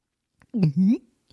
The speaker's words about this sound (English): That's me gulping.